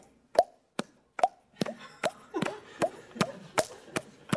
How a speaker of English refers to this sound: But the real problem was my faucet. It dripped. Have you ever tried to sleep with a dripping faucet?